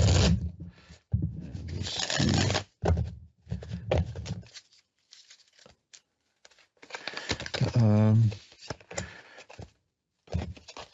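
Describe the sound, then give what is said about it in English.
Crisp shuffling of a deck of tarot cards: two dense riffling bursts, then scattered lighter flicks and taps as the cards are handled and squared, with a brief murmur near the end. “I'll shuffle them up again.”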